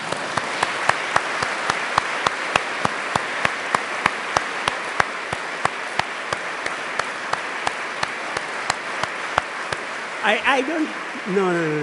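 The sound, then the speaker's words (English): An audience applauds in a steady wash of clapping, punctuated by loud rhythmic unison claps about twice a second that gradually slow, before a voice briefly cuts in near the end. “Can you join me in clapping you?”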